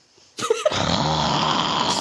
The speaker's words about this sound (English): You hear a loud snore.